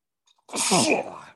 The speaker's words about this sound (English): I'm getting the sneezes